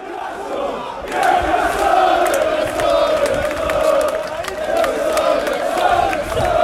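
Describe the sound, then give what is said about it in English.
A large football stadium crowd at St. James Park roars and chants together in a sustained, loud wall of voices on Thursday, swelling suddenly after a quieter first second and holding steady with rhythmic surges. “I was down, as I said, at St. James Park on Thursday, and this is what the atmosphere was like.”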